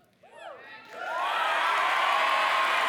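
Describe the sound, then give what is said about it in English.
An audience breaks into cheering, with a few rising whoops at first, then swells into a loud, sustained roar of shouting and clapping that holds steady to the end. “Okay. Now you can cheer the whole time.”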